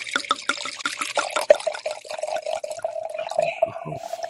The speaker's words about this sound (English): I was just fucking with you. I had to take a piss, and I thought it would be better if I said I was.